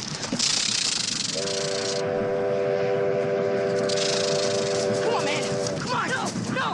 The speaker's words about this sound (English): Get the hell off the track. He's going to skin that train with his face.